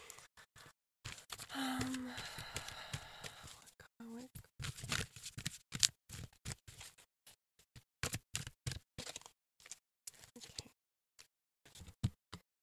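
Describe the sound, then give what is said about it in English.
A deck of tarot cards shuffled: a few seconds of steady papery rustling, then a long run of quick, irregular card snaps and flicks, with a brief soft murmur early on. “I have to keep shuffling.”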